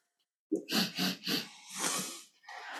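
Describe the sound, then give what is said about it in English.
A person sniffs several times up close: three quick, rhythmic sniffs followed by a longer, drawn-in inhale and another short breathy sniff at the end. “Sniff.”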